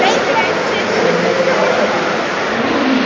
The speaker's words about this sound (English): And outside, it's raining so hard that you can see the water being blown into the venue. I've never seen something like this.